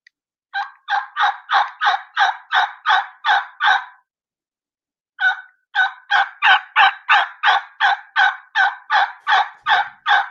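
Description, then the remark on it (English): A turkey call is used to make rollover yelps: two long runs of rhythmic, evenly spaced yelps, each note rolling over with a little click or hitch in the middle, about ten notes then a pause and fourteen more, loud with no talking. “Last but not least is the rollover yelp.”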